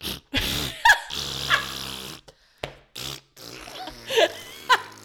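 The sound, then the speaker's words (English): Someone imitates with their voice the farting of a fellow camper heard at camp, blowing a string of sputtering, buzzy raspberry bursts, some long and drawn out, others short, separated by brief pauses and fairly loud throughout. “Like, we were sitting there and she started farting while in the bed.”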